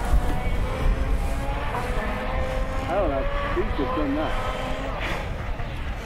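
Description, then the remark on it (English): A rally car's engine drones in on a mountain road at the Rest and Be Thankful, its revving note rising and wavering as it approaches, over steady outdoor rumble and faint murmuring voices. “Can't see the car yet. Tell you who this is. It'll be one of the Citroens, I think.”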